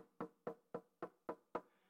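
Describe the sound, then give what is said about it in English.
Six firm, evenly spaced knocks on a door, distinct, each a sharp rap with a short decay, steady rhythm at about four per second, with no voices. “And he who keeps on knocking, it will keep on being open to them. Can I just say something about some of the things we're up against?”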